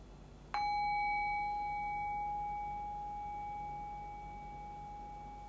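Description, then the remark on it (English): A single bell, rung during a guided meditation, is struck once and rings with a clear, steady tone that slowly decays, lingering alone against a quiet background without ever fully cutting off. “Allow the fading bell to guide your awareness into silence.”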